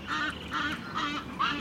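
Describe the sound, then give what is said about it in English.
Four harsh, nasal honks from a flock of ibises at their roosting tree in the city repeat in a steady rhythm, fairly loud, as the birds flap about, with no talking over them. “What a racket though. They are flapping and carrying on and honking.”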